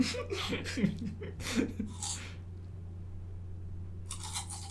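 A soundboard sound effect of a man gurgling water in his throat: a few wet, bubbling bursts with breathy hiss in the first half, then a lull and a short airy rush at the end, over a steady low hum.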